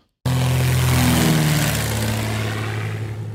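A propeller plane's engine roars, loud and steady, with a deep droning hum under broad rushing noise, as the plane takes off from Highway 16 in Washington County near Elkins, Arkansas, after an emergency landing there. It kicks in abruptly and holds for a few seconds, with no voices.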